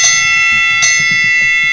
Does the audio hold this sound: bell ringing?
yes